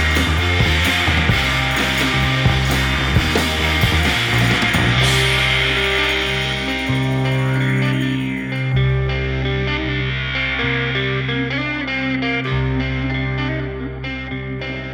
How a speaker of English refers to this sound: We like to put this on now. Very dreamy psychedelia coming out here.